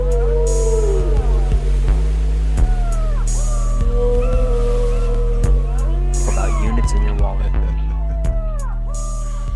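Whale song: long, sweeping moans and squeals rise and fall repeatedly over a steady deep rumble, with occasional bursts of higher hiss, continuous and fairly loud throughout.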